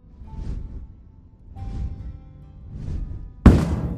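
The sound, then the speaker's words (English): Three deep, rumbling booms roll in at a slow, even pace, then a sudden loud, heavy thud, like something enormous hitting the ground, with a lingering low rumble: something gigantic landing right outside a front door. “like something gigantic landed right outside his front door.”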